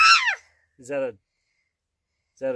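A bird gives three harsh, squawking calls: a loud, downward-sliding screech, then two shorter raspy squawks spaced more than a second apart, with silence between.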